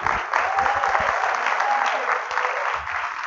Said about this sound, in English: So let's give Andy a real warm round of applause.